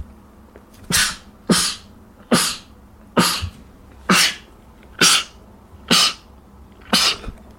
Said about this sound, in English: just about to sneeze.